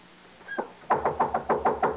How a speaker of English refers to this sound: Anybody here? I'm knocking down this door. Come on, open.